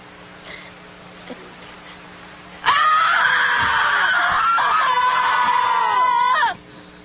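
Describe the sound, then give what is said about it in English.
After a few quiet seconds, people burst into loud, anguished screaming and wailing cries over a tree stump that hold for about four seconds, intense, then cut off abruptly. “What race do you think the people crying over the tree are?”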